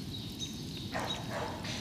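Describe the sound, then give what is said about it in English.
A couple of faint dog barks ring out in open air in a park near a dog walk, over a low, steady outdoor rumble, with no one talking. “Oh, there's also the dog walk is quite nearby, so that's why there are dogs.”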